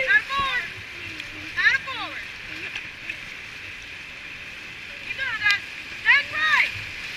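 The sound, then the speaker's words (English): A boat turns around and paddles back upriver into river rapids. Steady rushing rapids fill the background while a paddle splashes intermittently through churning water, with a few brief indistinct voices rising over the roar. “Boat turns around, paddles back up river into the rapid.”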